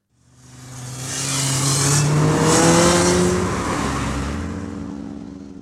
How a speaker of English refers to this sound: Next time he comes up the street like that again on that bloody motorbike, I'll bloody have him, I used to say.